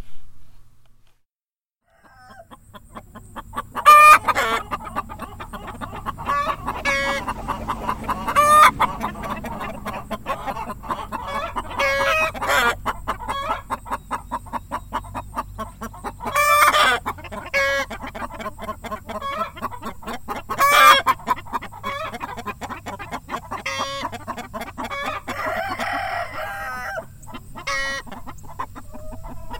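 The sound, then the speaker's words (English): A flock of chickens on a farm in Greenback, Tennessee, recorded in burning hot summertime, clucks and chatters continuously for about half a minute, fairly loud, with several sharp, louder squawks punctuating the steady babble. No one speaks. “take a little break with a recording of chickens that I made in the burning hot summertime down at Century Harvest Farms”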